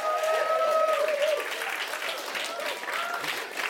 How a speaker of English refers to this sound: Come on, can I have a round of applause for that?